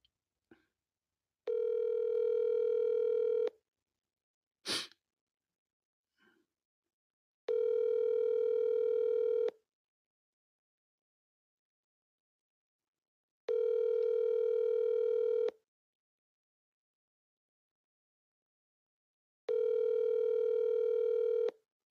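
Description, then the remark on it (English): A phone line ringing out unanswered: four steady two-second ring tones spaced evenly about six seconds apart, clear, with a brief click or tap near the start and no voices. “Nope, nobody's going to answer on this number.”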